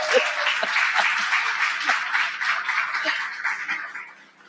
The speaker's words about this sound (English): But that applause has rung in my ears always. I've always wanted an applause, and I hope that you all will applause after this.